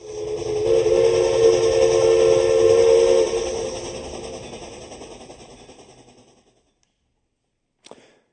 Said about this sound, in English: But I still hear the sound of that train whistle blowing in my sleep.